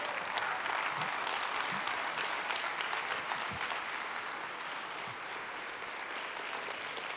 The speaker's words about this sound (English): Let's stand to our feet and give the Lord an appropriate hand clap. Would you do that?